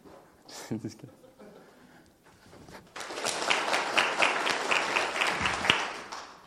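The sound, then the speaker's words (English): A short murmur of voices gives way to an audience breaking into loud, steady applause on cue as the speaker raises his right hand, many hands clapping densely for about three and a half seconds before it cuts off. “All right, so when I raise my right hand, everybody clap, okay?”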